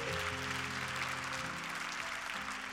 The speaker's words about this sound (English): Let's clap our hands for Dr. Lulu Baldwin.